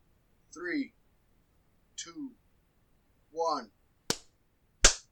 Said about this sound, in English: Let's count us in. I'm going to clap so I kind of know where we're going, and then you can go to ….